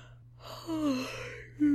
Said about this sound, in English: Sorry, I'm yawning a bit. I guess it is getting late.